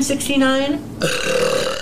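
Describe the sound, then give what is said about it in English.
A woman eating a pickle lets out two long, loud burps in quick succession, the first with a rising, wavering tone and the second a rougher, sustained belch. “you could subscribe to my sexy belly and my sexy burps and my nasty farts”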